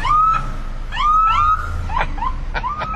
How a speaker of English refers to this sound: Oh no, it's an ambulance.